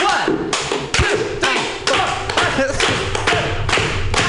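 A group of people clap together in a steady rhythm, giving 29 claps for someone who is 29 today, sharp loud claps falling about twice a second, with a murmur of voices underneath.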